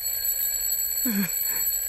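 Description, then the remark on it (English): An alarm clock rings continuously in a house with a steady, piercing electronic tone that stays loud and unchanging throughout, while a faint, brief muffled sound passes beneath it midway. “I think he might not be able to hear you because that alarm is really loud.”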